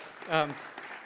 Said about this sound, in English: Well, thank you. I think we should clap for that. It was just amazing.